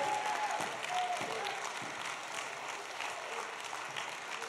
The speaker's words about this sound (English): If you're going to do that from this night forward, let God hear your resounding hand clap. Let him know that he's got an army here that's interested.